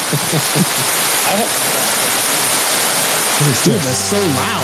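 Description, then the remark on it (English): A loud, steady downpour of rain, a thunderstorm-style sound effect played from a Rodecaster, hissing without pause throughout, with people talking over it briefly at the start and again near the end. “Was that applause or rain? What was that supposed to be? It was like a thunderstorm.”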